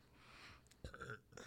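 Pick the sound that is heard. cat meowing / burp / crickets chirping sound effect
burp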